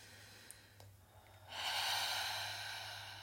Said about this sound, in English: You may find it helpful to take a deep inhale